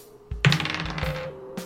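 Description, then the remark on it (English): Dice rolled for a strength check in a tabletop game clatter onto a hard table: a sharp tumbling rattle with a brief ringing tone, then a couple of lighter knocks as they settle. No one speaks. “Fucking dice.”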